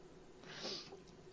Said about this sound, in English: The podcast now with added cats.